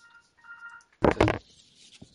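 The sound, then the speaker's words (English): A telephone rings with two short electronic tone bursts, followed by a sudden loud clatter like a handset being picked up. No one speaks. “So back after that little phone call.”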